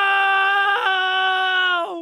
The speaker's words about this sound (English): I was just screaming because I was sad.